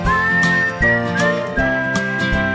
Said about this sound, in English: I'm in the mood for whistling. I'm in the mood for whistling, whistling along with you.